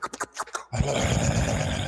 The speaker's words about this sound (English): I got that sound effect. There you go. Like, what was it? A heavy breather?